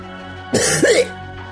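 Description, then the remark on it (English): A single harsh throat-clearing cough lasting about half a second, raspy with a brief voiced grunt at the end, standing alone against faint background hum. “Cough once for completion. Cough twice for a problem.”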